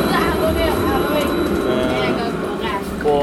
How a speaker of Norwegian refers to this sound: Vi nå på togstasjonen, ferdig med turneringa. Ja. Og der hører du trikken i bakgrunnen.